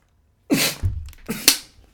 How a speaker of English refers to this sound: Just fucking like a dork just coughed while I was drinking water and like snot just came out of my nose, dude.